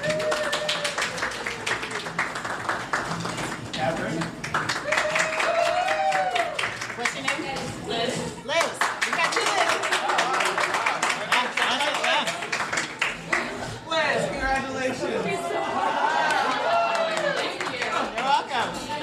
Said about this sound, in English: applause. Snaps. Applause, whatever.